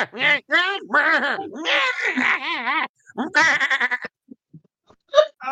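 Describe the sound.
A person imitates a sheep with a run of loud, wavering bleats in quick succession, trailing off into a few faint sounds and a short final bleat.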